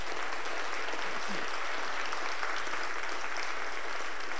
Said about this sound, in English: If you don't mind, could you stand on your feet and let's honor this man of God, your lead pastor, Pastor Greg. I know, clap your hands.